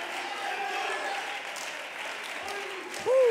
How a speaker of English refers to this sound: Come on, let's stand to our feet and clap our hands unto the Lord. Let's clap our hands unto the Lord.